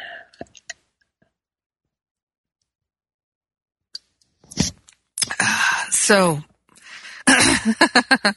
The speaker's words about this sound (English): I'm going to take a sip of my spiritual espresso here.